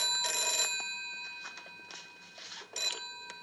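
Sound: telephone ringing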